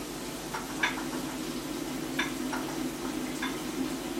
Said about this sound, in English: I feel like this sound really sets the mood. A really nice running of water.